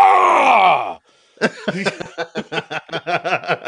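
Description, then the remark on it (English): Someone lets out a long, drawn-out groan that slides downward in pitch, the effortful sound of getting out of a chair, then pauses before a quick rhythmic run of short voiced grunts. “I think older dads just like to make noise. My dad's the same way. Really? Getting out of the chair.”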